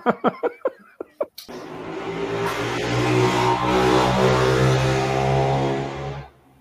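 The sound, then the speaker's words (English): A few short bursts, like quick laughs, give way to the loud, steady rumble of passing car traffic that holds for several seconds and then cuts off abruptly. “Just waiting for the traffic to pass.”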